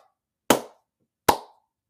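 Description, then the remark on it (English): Two loud, sharp hand claps, each with a brief ringing tail, spaced just under a second apart against silence, with no voices, as applause for an older sister graduating from Texas Tech University. “Round of applause.”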